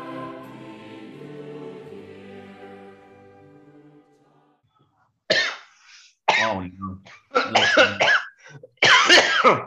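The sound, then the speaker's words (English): A tonal musical tail fades out into silence, then a man clears his throat and coughs in several loud bursts, the harsh fits getting stronger toward the end. “A pro's pro coughing.”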